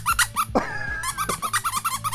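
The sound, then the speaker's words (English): Someone imitates a pig squealing: a rapid run of short, high, nasal squeaks broken by one longer drawn-out squeal, fairly loud, with no other talking. “I'll take him straight to the pig pen, make that little piglet squeal, and I pull out some bacon grease and just start dumping it on my head.”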